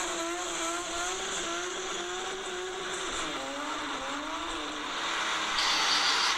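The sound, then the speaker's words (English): A BMW E36 engine revs steadily, its loud droning note rising and dipping in pitch over several seconds, with a brief surge near the end and no voices. “That's an E36.”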